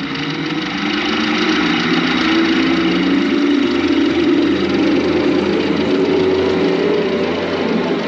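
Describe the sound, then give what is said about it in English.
An old Model T car engine runs steadily for several seconds, a loud, continuous chugging drone with a rough mechanical rattle and no voices. “He's flying to her house as the engine is now powered by Flubber.”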